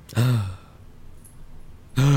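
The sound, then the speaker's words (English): A breathy vocal gasp of mock surprise, short and sharp, followed by a brief quiet pause before another voice sound begins at the very end. “Gasp.”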